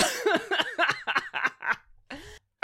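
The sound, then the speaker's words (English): A quick run of short, voiced coughs tumbles out in an uneven rhythm, fading off before a pause and one last harsher burst. “Because I'm coughing. I'm actually coughing.”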